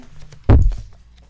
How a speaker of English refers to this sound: Can you open that door real quick? We're getting my dog out.